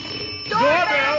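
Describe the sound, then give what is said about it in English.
A doorbell gives a short, steady buzzing tone, and a voice starts talking over it about halfway through. “Doorbell!”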